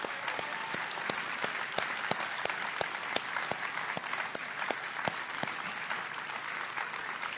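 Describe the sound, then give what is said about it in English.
An audience claps steadily to acknowledge and thank standing leaders who work with middle and high school students, a dense, sustained patter of hands with sharper individual claps popping out, held at an even level for several seconds with no talking. “So if you're one of our leaders that works with 412 students, middle or high school, will you just stand up real quick so that we can just acknowledge you and clap for you and say thank you for your faithfulness?”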